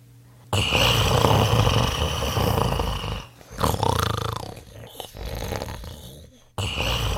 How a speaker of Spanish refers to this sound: Pronto el gigante se quedó dormido, y sus resoplidos y ronquidos hicieron eco en toda la sala.